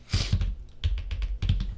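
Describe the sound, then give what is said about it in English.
Quick bursts of typing on a computer keyboard, fairly loud: clustered clacking keystrokes in three short runs separated by brief pauses, with no voices, as someone types in the name Tommy. “Don't look at me when I'm typing.”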